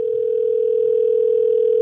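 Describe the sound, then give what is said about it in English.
A telephone ringback tone from an outgoing call placed by Duplex, an artificial intelligence voice system, ringing a hair salon to book an appointment: one steady, unbroken electronic hum that holds at a constant, fairly loud level for the whole stretch, with no voices. “This is a phone call that they set up between Duplex, which is a new voice artificial intelligence system they have, ringing up a hair salon appointment.”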